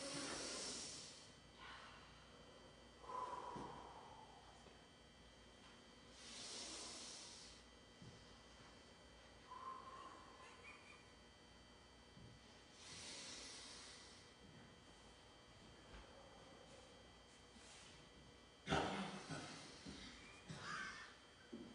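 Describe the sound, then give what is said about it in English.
Slow deep breaths from several people with eyes closed, six each, long airy inhales through the nose and whooshing exhales out the mouth, repeating every few seconds at an uneven pace, moderately loud, with no talking. “Take a deep breath in your nose and slowly let it out your mouth.”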